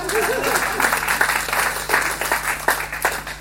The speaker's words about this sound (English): Round of applause for Jesus.